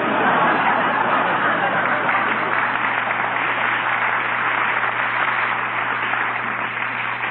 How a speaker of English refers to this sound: Look, pal, the crowd's getting a little impatient here.